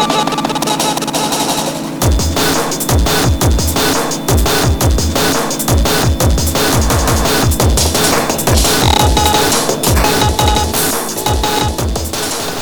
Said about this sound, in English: So this is a noisier track, and this is all circuit bent stuff.